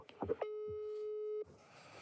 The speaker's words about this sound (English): European ringtone. What do you mean, European ringtone? It's not going beep, beep, beep, beep. It's doing European ringtone.